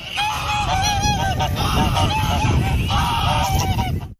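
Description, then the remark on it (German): Loud goose honking in repeated harsh, nasal calls, overlapping bursts one after another for a few seconds over a noisy background, then cutting off abruptly. “die schreibende Gans.”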